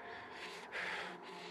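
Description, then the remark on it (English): A man's quick, shallow, frightened breaths drawn in and pushed out in rapid succession, fairly soft, with brief pauses between them and no talking. “His breathing becomes quick.”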